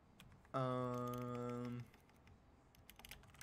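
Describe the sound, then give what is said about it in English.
Faint, scattered keyboard clicks tap away irregularly in the background as someone types to look something up, briefly overshadowed by a loud, steady buzzing tone lasting just over a second. “It's funny because I'm pretty sure this is going to pick up the little clicking sounds, but it does, but you're good.”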